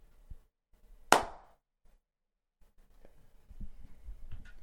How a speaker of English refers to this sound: Can you put your mic in front so I can clap in front?